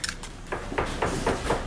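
Kitchen staff chop vegetables with a knife on a cutting board in a deli kitchen, a steady run of five or six quick, evenly spaced strikes over a low, busy kitchen background hum.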